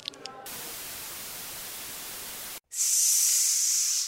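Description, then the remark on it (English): A person hisses twice: first a long, breathy, rushing hiss lasting about two seconds, then after a brief pause a sharper, higher sibilant 'sss' hiss, with no other talking. “There's only so many ways you can hiss.”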